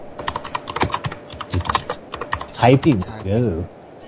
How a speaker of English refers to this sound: Typing.